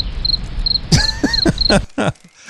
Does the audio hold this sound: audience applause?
no